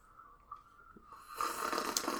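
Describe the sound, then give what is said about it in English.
A loud, airy slurp of someone sipping hot herbal tea made with pine and plantain, about a second long, following a faint steady hum. No one speaks. “Yes, this is where we sip our tea.”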